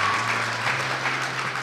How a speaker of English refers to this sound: So one more round of applause for this beautiful gift from our KidSpace.